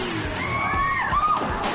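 A motocross bike engine revs hard as a youth pastor tries to pop a wheelie, its whine rising and then dropping, followed by a rough thud as it crashes into a wall and dents it, all over a noisy, busy background.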